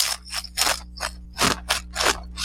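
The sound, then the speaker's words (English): Crunching Kettle brand kettle-cooked potato chips: about eight sharp, crackly bursts in an uneven chewing rhythm, fairly loud over a low steady hum, with no talking. “But I'm going to go ahead and crunch one of these because they are kettle chips.”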